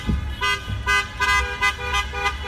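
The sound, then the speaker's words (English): Several car horns honk repeatedly in overlapping blasts, some long and some short, with engine rumble beneath, from people protesting in their cars in Charlottesville. “But one thing that's been different about recent protests is how many people are protesting in their cars.”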